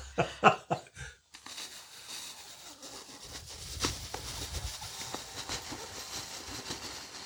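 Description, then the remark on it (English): A few short, sputtering lip buzzes like a vocal fart, made through a small hole in the lips as a voice exercise, followed by a long, steady, breathy rush of air forced through the lips. No one speaks. “If you then start to make a little hole in your lips, I hope I'm not going to make a fart noise, but we'll see.”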